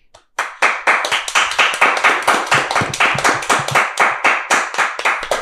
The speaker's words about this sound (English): Little Dumbledore clap.